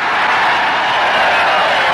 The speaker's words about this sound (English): Okay, 25,000 cheering extras.